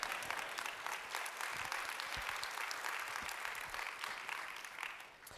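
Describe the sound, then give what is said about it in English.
A crowd applauds steadily, a dense wash of many hands clapping at once, sustained at an even level for several seconds with no one speaking. “However, and you may not clap for this part”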